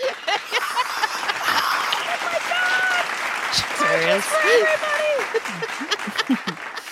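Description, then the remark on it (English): A crowd claps and cheers steadily throughout, a dense wash of applause with whoops and shouted voices rising and falling over it, moderately loud and continuous. “And then everybody's clapping crazy.”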